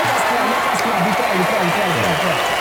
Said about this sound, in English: We need a round of applause for ourselves.